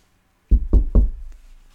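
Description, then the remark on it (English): Three firm, evenly spaced, loud knocks on a wooden door, followed by a soft fourth tap and a short fading resonance with no voices. “He says, listen, I am standing at the door, knocking.”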